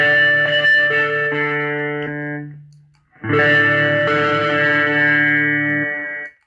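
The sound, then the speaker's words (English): Two sustained, distorted electric guitar chords played through a reverb pedal into a bedroom amp ring out with heavy reverb, the first fading into a lingering wash before a second loud strum swells up and holds, aggressive, with no talking. “Once again, the multi-stomp just being louder, which I prefer, and I like my reverb to be a little bit loud and aggressive.”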